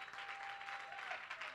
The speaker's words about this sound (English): And the church shouted, amen. Give the Lord one more good hand and clap of praise.